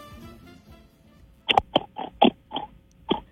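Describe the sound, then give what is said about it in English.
A person imitates a pig, letting out about six short, nasal oinking grunts in quick, uneven succession after a quiet moment of faint background murmur. “please make the sound of a pig.”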